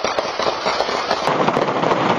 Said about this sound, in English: What you just witnessed was gunfire going off in a neighborhood in Bayside, Queens that was captured on various video doorbell systems.